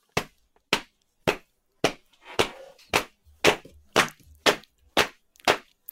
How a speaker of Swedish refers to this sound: Med en ramsa. Oh. Och nu måste du hjälpa mig att klappa takten.